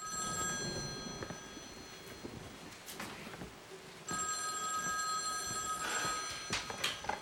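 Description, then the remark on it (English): A telephone bell rings in two bursts separated by a short pause, its bright metallic trill clear over faint background noise, with no one speaking; a call from Travis Walton at a gas station several towns over, received by his best friend. “5 days later, Travis's best friend receives a phone call from Travis, who is like several towns over at a gas station.”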